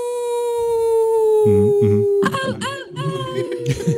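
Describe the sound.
A person imitates a wolf howl, one long sustained tone slowly sliding downward for about two seconds, fairly loud, followed by people chattering and laughing.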